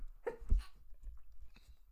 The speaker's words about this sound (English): I have to sneeze.